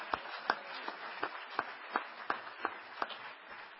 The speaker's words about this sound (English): All right, one last round of applause for our P2s, please.